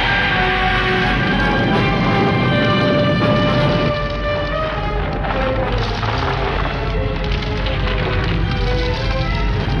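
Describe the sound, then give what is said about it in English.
A loud, sustained crash of splintering and cracking wood as a ship crashes through a ceiling, heavy destruction rumbling continuously with dense debris noise, mixed with tonal music-like sustained notes throughout. “And finally, it carries through to the ship crashing through the ceiling.”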